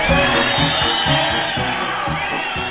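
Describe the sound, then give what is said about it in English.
Prisoners at San Quentin Prison cheer, whoop and applaud a country music singer loudly at a live concert on New Year's Day 1976, a dense, continuous roar with a steady rhythmic low thumping pulsing beneath the noise throughout. “Thank you, friends, and nice round of applause for one of the most talented little ladies in country music,”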